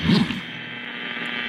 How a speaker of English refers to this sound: Static.